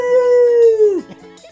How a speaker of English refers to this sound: Even the dog is howling. He's like, yes.